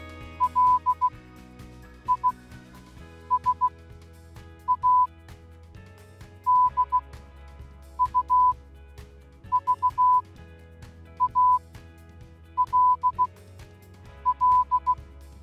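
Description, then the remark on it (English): Morse code beeps spelling out a name: clusters of short, steady mid-high tones, dots and dashes in rhythmic groups separated by pauses, playing over a soft background music bed with no talking. “I found your name in Morse code. You want to hear what it sounds like?”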